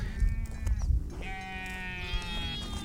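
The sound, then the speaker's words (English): Goats bleat in long, wavering calls, one after another with some overlap, over a low rumbling background. No one speaks. “He was herding his goats through the misty, mountainous forests of Kaffa at the eastern edge of the kingdom of Abyssinia when they began devouring the red berries for which the region is named.”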